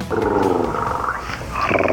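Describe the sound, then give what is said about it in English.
A voice imitates a purring kitten with a loud, rough, rumbling growl that holds steady for about two seconds, then shifts to a higher, brighter tone near the end. “I love when you purr like a kitten.”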